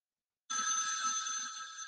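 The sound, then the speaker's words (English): A telephone ringback tone on an outgoing call starts after a brief silence and rings steadily and fairly loudly to the end, with no voices over it. “I tell you, you better pick this phone up.”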